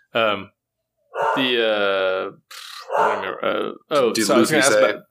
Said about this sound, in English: Yeah, my dogs are barking.